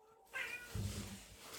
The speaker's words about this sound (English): That's my answer. A meow.